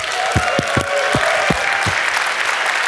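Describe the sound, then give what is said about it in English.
An audience at CCC applauds at the opening of an evening show in a dense, steady wash of clapping, with several louder low thumps punctuating it at irregular intervals. “Everybody, a round of applause, come on!”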